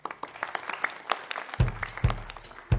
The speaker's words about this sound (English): And then once you've finished, you're going to get a big round of applause. And everybody else really, really celebrate what we're hearing here.